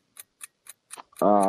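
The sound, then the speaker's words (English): A clock ticks four times at a quick, steady pace with crisp clicks as a timer starts for a quickfire question round, then a loud, sustained buzzing tone cuts in over the ticking. “All right, the clock is on.”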